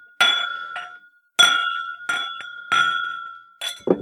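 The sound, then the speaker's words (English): Several glasses clink together in a bright, ringing toast, with a handful of separate chimes over a few seconds, each one sustaining a clear tone before the next strike. No voices are heard. “Wow, there's so many glasses. Sounds like we fell with a plate full of glasses.”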